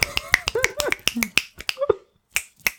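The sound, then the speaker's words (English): A rapid run of sharp finger snaps, given as applause during a poem at a spoken word poetry night, roughly a dozen in quick uneven succession, with brief voiced sounds mixed in between, then a pause and a few final snaps. “Well, no, you snap during the poem.”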